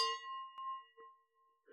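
wine glasses clinking

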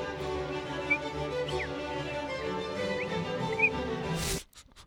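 birds chirping

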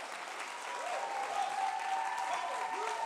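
audience applauding

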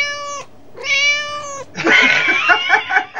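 cats meowing

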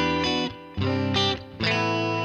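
electric guitar

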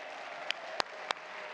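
audience applause and cheering

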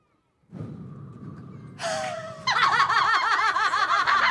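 person whistling

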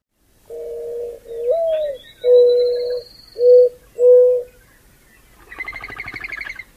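mourning dove cooing song

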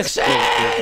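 sheep bleating

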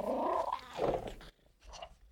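cat vocalizing

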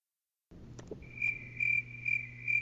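crickets chirping

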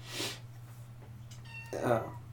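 kitten meowing

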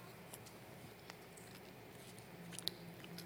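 eating communion bread

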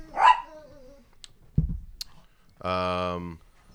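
dogs barking

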